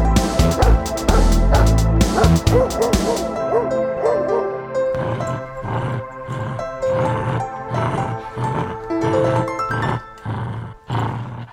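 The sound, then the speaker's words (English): A dog barks loudly, with a rapid flurry of barks at first, then a steady, rhythmic series of sharp woofs, about one every second. No one speaks. “Oh, man, dog. Dog. Dog.”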